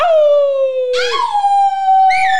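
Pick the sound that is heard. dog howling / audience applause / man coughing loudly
dog howling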